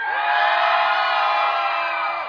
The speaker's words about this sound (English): So when I say Gators, you cheer for your team. Are you ready? Gators. Wow, that's pretty loud.